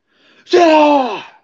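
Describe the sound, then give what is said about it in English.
A voice imitates an exaggerated, very loud sneeze: a faint breathy intake, then a long, strained, voiced burst whose pitch slides downward before trailing off. “That's not even a sneeze. Who the hell sneezes like that?”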